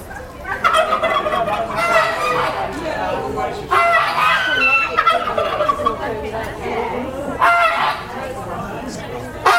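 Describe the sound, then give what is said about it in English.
A dense chorus of poultry calls at a bird show with geese, ducks and chickens: turkey-like gobbling, clucking and honks overlapping continuously and fairly loud, with a murmur of people underneath. “Silver apple yards, there's geese, ducks, chickens, merrows, that's it.”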